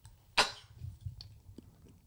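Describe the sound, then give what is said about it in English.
One sudden, loud sneeze bursts out early, a sharp breathy blast that dies quickly, followed by faint rustling and low background murmur with no speech. “Wait, I'm going to sneeze.”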